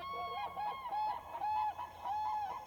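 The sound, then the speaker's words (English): An exotic bird's call in a film scene repeats several times in quick succession, each a loud, nasal, honking cry with a warbling edge, clear with no talking. “According to Snopes, it's a bird.”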